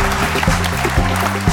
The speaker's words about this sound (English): Ladies and gentlemen, big round of applause for our panel of traffic experts.